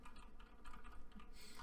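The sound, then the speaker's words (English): Rapid, steady clicking of keys on a computer keyboard as a clerk looks up rooms in the system, a quick run of light taps with no talking. “He starts typing away.”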